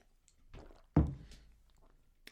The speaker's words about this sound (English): And before I get to this next segment, you could probably tell my voice, I need a drink of water, so just let me do that really quick right now.